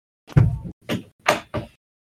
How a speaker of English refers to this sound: I'm gonna go shut this goddamn door.